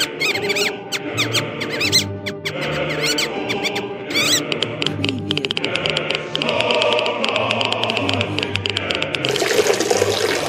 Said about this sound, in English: Well, this is a little mouse from Chernobyl pissing in the river.